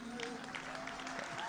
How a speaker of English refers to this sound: No, that clapping of hands is suspicious. Clap hands very well. Amen.